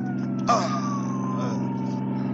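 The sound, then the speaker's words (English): An ambulance siren wails in a single long, slowly falling tone over a heavy, steady engine rumble, with a brief clatter near the start and no voices. “Pulsey, tell the driver to stop this ambulance.”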